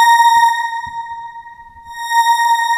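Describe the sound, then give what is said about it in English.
A steady, high violin-like tone made by semi-modular synthesis with an amplitude envelope, chorus ensemble and big-hall reverb holds for nearly three seconds with a bright stack of overtones, briefly thinning in the middle, with a wide, hall-like wash. No one speaks. “Almost sounds like a violin. So we just went from kick drum to violin in like a minute and a half.”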